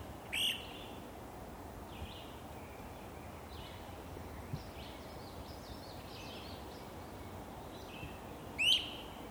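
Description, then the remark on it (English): A great crested flycatcher gives two loud, rising whistled wheep calls, one near the start and one near the end, over steady outdoor background noise and faint chatter from other birds, in late May at Florida Lake Park, where the trees have not yet leafed out. “It's late May, and the trees at Florida Lake Park have not yet leafed out, and I have a look at a most beautiful bird. A great crested flycatcher.”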